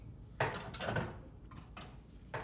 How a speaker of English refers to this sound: I've got a lot of dishes done so far. I'm enjoying talking. I'm enjoying doing dishes.